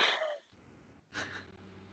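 A soft gag: two short, breathy, retching bursts separated by a brief pause, the second slightly lower and rougher, with no talking.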